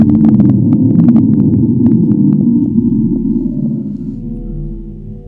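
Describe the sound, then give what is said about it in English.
A deep underwater drone, the recorded underwater sound known as the Slowdown, rumbles steadily, scattered with faint clicks, its low tone gradually sinking in pitch and fading over about five seconds. No voices. “Okay, and so then the next one I got here is the slowdown. That sounds like fucking Cthulhu, man. Sounds like a plane almost crashing.”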